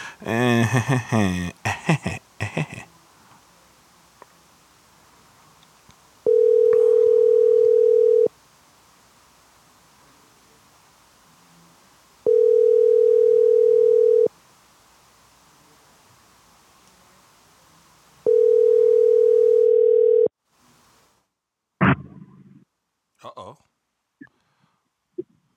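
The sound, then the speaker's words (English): Three steady ringback tones from an outgoing phone call to a man who is not answering, each about two seconds long and evenly spaced with quiet gaps, bracketed by brief muffled noise and voices at the start and end. “He's not answering the phone right now. Let's try him again.”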